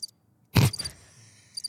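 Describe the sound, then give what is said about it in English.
Quiet, high-pitched cricket chirps sound at the start and end of a short stretch, with a brief soft thump in between and a faint lingering trill; no one speaks. “Crickets. I was just waiting for a moment to use that one.”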